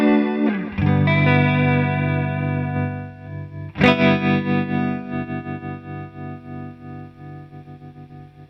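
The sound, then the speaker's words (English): An electric guitar chord played through a chorus effect pedal rings out with a shimmering, warbling chorus, struck again partway through and left to sustain with a pulsing, wavering decay. No voices. “Yeah, it's chorusy at first.”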